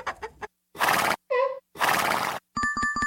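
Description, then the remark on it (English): A horse whinny from a sound-matching game, short and toy-like, in choppy bursts: rough breathy snorts around a brief wavering neigh, then a buzzy pulsing tail. Fairly loud, with no talking. “Sound is horse.”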